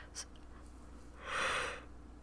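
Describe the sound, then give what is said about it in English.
A single big yawn comes through as a long, breathy exhale, following a brief faint click, with no talking. “Big yawn.”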